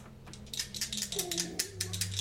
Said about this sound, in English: Damn, boy. Hear that rattle of dice. And that is much better.